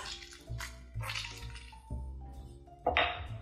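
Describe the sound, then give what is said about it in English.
Wet, squishy twisting and squeezing sounds of halved lemons being juiced on a citrus reamer into a quarter-cup measure, several bursts with juice dripping and splashing, ending in a sharper, louder squelch. “And start using my citrus reamer to just catch as much juice as possible in this quarter cup measure.”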